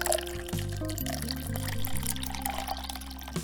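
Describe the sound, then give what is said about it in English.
Red wine poured steadily into a glass, a continuous gurgling stream whose pitch climbs in small steps as the glass fills, with no one speaking. “I think a glass of beautiful red wine will do.”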